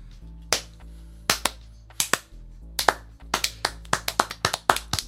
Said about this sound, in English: Clap for herpes, everybody.